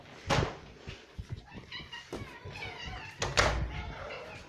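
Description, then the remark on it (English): Cats meow insistently for food, past their feeding time, with the cat food already out, overlapping with sharp knocks and clattering like cupboard doors or cans being handled, while a voice talks intermittently in the background. “I really, really don't know why the meowing is increasing when I already have the cat food out.”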